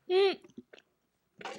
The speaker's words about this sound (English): Go ahead, chew it down, man. Don't choke. If you choke, I don't know CPR.